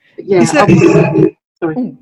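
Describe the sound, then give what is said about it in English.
A loud, rough, harsh noise from a microphone that sounds like a lion's roar, lasting about a second, then a shorter growling burst after a brief pause. “Weird, this microphone, that sounded like there was a lion in the room just then.”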